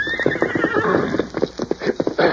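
A horse whinnies with a high, wavering, slowly falling neigh that runs over a steady clatter of hoofbeats, which grow sharper and more rhythmic toward the end.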